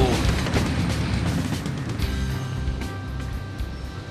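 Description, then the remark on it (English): A car being torn apart in a car shredder in Los Angeles: a loud, continuous roar of grinding and crunching metal, punctuated by sharp cracks and heavy bangs, with a deep low rumble throughout. “There, you just shredded your first car.”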